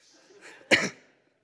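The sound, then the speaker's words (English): A single sharp sneeze bursts out, preceded by a quick breathy intake, loud, then quickly fading into quiet. “God bless you. Not allergies.”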